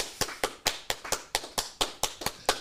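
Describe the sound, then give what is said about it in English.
Steady applause from a single pair of hands: about a dozen crisp, sharp claps at an even, brisk pace, with no voices underneath. “Round of applause for Manscaped being the presenting sponsor of the You Should Know Podcast.”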